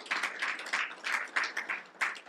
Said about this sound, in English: Yeah, you can clap. You were fixing to. People should clap.